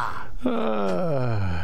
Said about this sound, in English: I can tell by the breathing in the microphone that sounds like an obscene phone call.